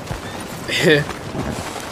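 Hooves of the player's horse, Scrawny Nag, clip-clop steadily in a video game at moderate loudness over a low game ambience, with a short, bright whinny rising and falling near the middle.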